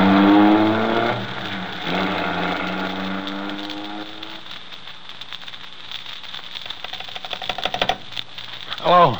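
The engine of a stolen 1940 Mercury sedan roars as it is driven off by Turner's garage, its pitch sliding downward as it recedes, followed by a stretch of crackling, rattling noise and a brief burst at the end.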